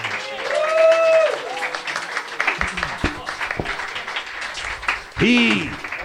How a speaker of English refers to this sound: and make these fuckers applaud you.